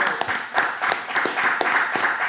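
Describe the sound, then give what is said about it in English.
A burst of steady, rhythmic clapping, sharp claps landing at an even quick beat over a bright, continuous hiss of applause, with no talking. “Clap it up for a real nigga.”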